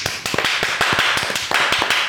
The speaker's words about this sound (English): Why are you clapping so loud? Because they deserve it. Honestly, they deserve it.